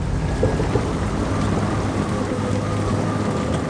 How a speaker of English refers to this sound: Rain lashed down onto the deck of an old-fashioned sailing ship. Wind whipped the sails